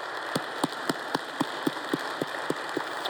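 An audience applauding a volunteer who leads a disabilities care ministry, with about a dozen sharp, evenly spaced claps standing out in a steady rhythm above a continuous wash of hissing clapping noise.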